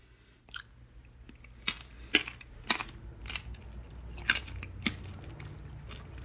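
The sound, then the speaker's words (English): Crunchy chewing of big passion fruit seeds, a series of sharp, crisp crackles at an uneven chewing pace over a low steady background hum, with no talking. “the seeds will be real crunchy”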